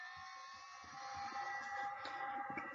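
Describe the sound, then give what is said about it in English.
Sustained electronic musical tones hold steady in a bright, buzzy chord from a TV soundtrack, with soft low pulses thudding irregularly beneath and the level swelling slightly after the first second. “You hear this? These musical tones?”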